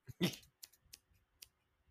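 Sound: scissors snipping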